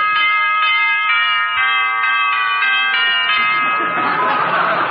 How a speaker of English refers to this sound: Well, you really fixed that doorbell, didn't you, dearie? Gee, it's wonderful, ain't it? The old gray mare. I wonder who that could be.